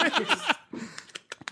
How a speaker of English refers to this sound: It has a clicking sound.